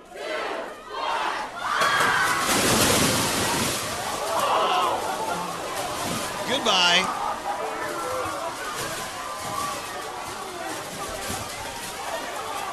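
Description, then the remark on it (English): Voices count down and shout, then a loud, rushing flutter of paper pours down a stairwell as graduating seniors at a high school in Arizona throw their paper assignments from the top, amid a cheering, shouting crowd, the roar and rustle continuing for several seconds. “What does paper sound like when it's being thrown down the stairs?”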